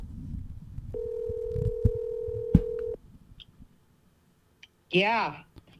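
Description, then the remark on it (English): A phone line rings once with a steady two-second tone over low background rumble, then after a short pause someone answers with a brief spoken greeting. “That's no way to answer a phone.”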